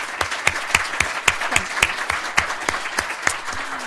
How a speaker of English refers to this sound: Please join me in a round of applause for this fantastic panel.